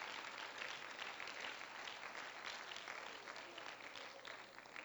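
An audience at a church service claps together in praise of God, a steady, dense burst of applause lasting several seconds, the many hands blending into a continuous, even roar that fades slightly toward the end.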